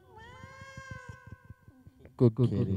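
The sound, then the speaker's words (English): A cat lets out a long, drawn-out meow that slowly falls in pitch, with a faint pulsing rumble underneath, followed by a couple of louder, sharper vocal bursts. “One more for the cat.”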